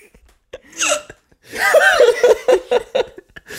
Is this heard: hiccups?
yes